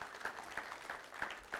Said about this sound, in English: For those of you that served with us this week, thank you so much for serving with us. All-Stars Week was amazing. Y'all give those volunteers a round of applause.